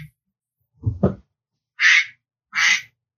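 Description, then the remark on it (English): A cell phone left lying in the room plays a duck-quacking ringtone: a short low grumbling sound, then two loud, harsh quacks in quick succession, with no one talking. “I'm going to have you pause there just for a second, because if you hear a duck quacking in the back. Hey, you stole my ringtone.”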